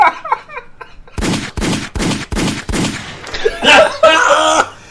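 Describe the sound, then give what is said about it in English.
A gunshot sound effect rings out as five loud, sharp shots in quick, evenly spaced succession, followed by people laughing and chattering right after the volley. “Hit the gunshot.”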